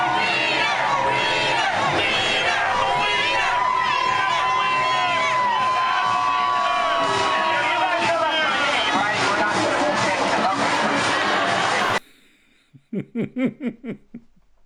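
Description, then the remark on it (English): A dense crowd at a gay pride parade where Anthony Weiner was marching shouts and cheers in a loud, continuous roar of many voices, then it cuts off abruptly, leaving one voice in short, rhythmic bursts like laughter. “Imagine the moment where you're standing there and you think you're going to be mayor of New York and people are shouting your name and you're not sure if they support you or if they just love cock.”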